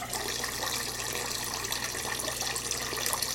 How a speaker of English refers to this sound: So now we're just adding the water back that they dehydrated out of it to make it regular juice, essentially.